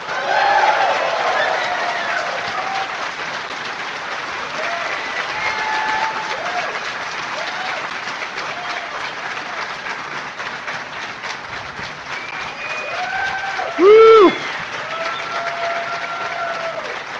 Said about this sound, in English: Ladies and gentlemen, please give a round of applause to Music Man at Blizzard, Mr. Russell Brower.